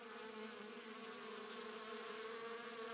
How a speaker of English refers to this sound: The bees were still buzzing as suspiciously as ever. Some of them, indeed, left their nests and flew all around the cloud as it began the second verse of this song.